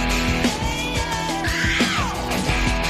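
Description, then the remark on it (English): A person lets out a loud, drawn-out scream with a rising and falling pitch, set against a steady musical backing with a pulsing beat, forceful throughout. “We the people, and now we do reserve the right to scream.”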